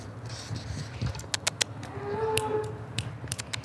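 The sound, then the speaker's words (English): A tiny little cow lets out a low, drawn-out moo that carries through the whole moment, with a few sharp clicks and a faint higher tone rising over it partway through. “Come here, cow. Come here, cow. I don't think that works for cows.”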